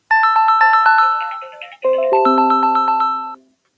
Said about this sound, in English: I lost my train of thought here because my phone rang. I apologize for that.